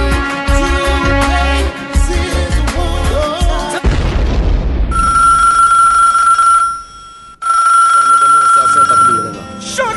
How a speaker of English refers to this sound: Know when the phone rings, you know when the phone rings here at the Sunsplash Mix Show.